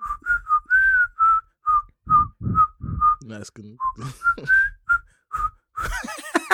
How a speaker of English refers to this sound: Can you whistle it?